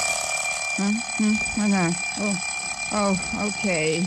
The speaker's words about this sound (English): Okay. Darned alarm clock. I wish you'd waited for another minute.